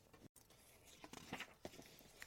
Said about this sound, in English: You're going to hear the pages turn.